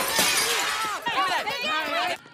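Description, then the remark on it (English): A store door is smashed during a Black Friday sale, with a burst of shattering glass at the start, followed by a crowd's loud, overlapping shouts and yells that carry on until the sound cuts off abruptly. “Wow, only 22 seconds from muttering to door smash.”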